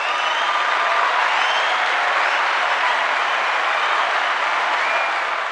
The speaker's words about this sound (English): let's give a big round of applause to Jennifer Asidao-Querubin